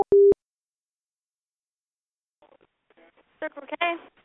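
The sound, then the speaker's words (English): A phone's busy tone after a call is hung up cuts in with a single loud, steady electronic beep right at the start, then goes silent before muffled voices start talking. “I'm going to hang up now.”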